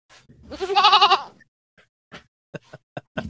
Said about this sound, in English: So that was from the Hatbox Goat there.